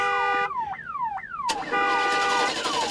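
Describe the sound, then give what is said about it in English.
A car alarm blares, cycling through rapid descending electronic sweeps followed by a harsh, bright tone, loud and continuous with no voices. “You gotta turn the alarm off first before it starts.”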